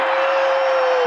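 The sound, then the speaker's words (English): A basketball arena crowd at a Utah Jazz game against Cleveland roars and cheers loudly and steadily during a Cleveland timeout after a 19-3 Jazz run, a dense wash of voices with a single sustained tone running underneath, and no one speaking clearly. “Listen to the crowd!”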